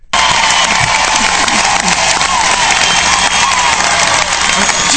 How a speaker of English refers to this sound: And I love how she just mentions we have free speech and it's like a 30-second applause. God, do I wish I was a politician just for these easy crowds.